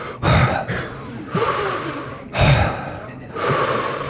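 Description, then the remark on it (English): Heavy, rasping breathing heard on the other end of a phone line: about four slow, loud, noisy breaths in and out, with short pauses between them, like someone deliberately imitating menacing breathing. No talking. “And all you hear on the other end of the phone, I'm serious, it's like Darth Vader.”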